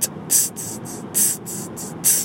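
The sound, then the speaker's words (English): A voice beatboxes hi-hats: crisp, hissy 'ts' bursts in a steady groove, a longer open hiss followed by two short ticks, repeated about three times, clear with no talking. “With the hi-hats is...”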